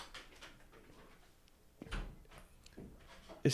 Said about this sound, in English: Our man's just shut the door all the way. Yeah. Like, that's not the move. Yeah, that wasn't the move.